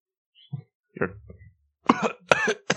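Two people cough: a few soft, scattered coughs first, then louder, harsher bursts in quick succession toward the end, with no talking.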